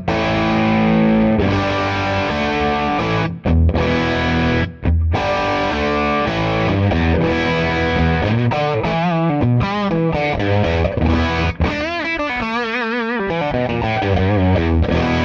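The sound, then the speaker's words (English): Electric guitar chicken picking through an effects pedal: loud, distorted twangy notes ringing together, shifting into quick snapped runs with wavering bends, played alone without any talking. “I wonder what it'd sound like with a bridge, with a proper bridge, chicken picking.”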